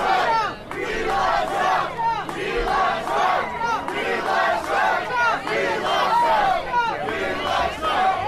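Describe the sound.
A large crowd chants "We want Trump, we love Trump" in unison as DeSantis walks onto the stage with Governor Reynolds in Iowa, loud and rhythmic, with repeated shouted phrases rising and falling steadily for several seconds as many voices blend together.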